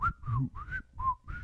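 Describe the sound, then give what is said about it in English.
Someone whistles a short, wavering tune, a few melodic phrases rising and dipping in pitch with brief breaths between them, no talking. “Imagine walking into that bathroom, kind of whistling a tune.”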